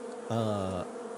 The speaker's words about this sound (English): The windows are intact, but you see that the wasps have swarmed over the building in its entirety.